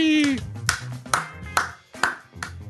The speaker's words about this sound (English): I've got a slow clap for you somewhere, probably.